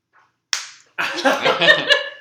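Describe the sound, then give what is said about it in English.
A single sharp slap cracks out and quickly fades, followed moments later by a louder, busy burst of jumbled sound that carries on to the end. “I deserved that slap.”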